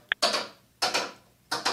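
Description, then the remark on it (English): A brand-new prize wheel spins with clattering clicks: one sharp tick, then three loud bursts of rapid rattling about every two-thirds of a second, each fading before the next. No voices. “I did find a wheel, Greg.”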